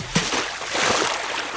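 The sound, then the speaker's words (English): A sudden splash as someone dives into water, followed by a steady rush of churning, bubbling water that continues for over a second. “Let me go take a look in the water and dive in and see if I can find something.”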